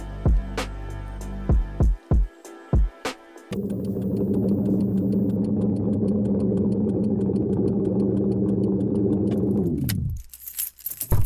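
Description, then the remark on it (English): A few sharp clicks and rattles, like keys, come first, then a car engine starts and idles steadily and loudly for several seconds before cutting off near the end. No one speaks. “So how it plays in the record is sort of like you hop into this car with me, and I'm taking you to the movies, and this is how I felt.”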